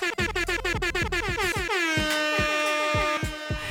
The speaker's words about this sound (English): I need some air horns for that. Hold up.